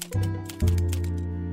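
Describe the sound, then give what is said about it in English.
A typewriter clacks in a quick, uneven run of keystrokes over a steady low droning hum. No one speaks. “went up to his room to have a go at typing the story about the ceramic works.”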